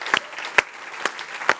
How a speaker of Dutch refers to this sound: Come on, let's give Jesus a hand right now. Jezus een applaus for his word.